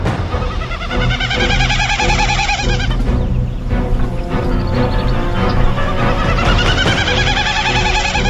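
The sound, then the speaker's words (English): A boreal owl sings a loud, sustained run of rapid, pulsing hoots that roll together into a trill, repeating steadily with no one speaking over it. “But he's better known as the boreal owl. Whose song has been compared to the non-vocal winnowing sound of a Wilson's snipe.”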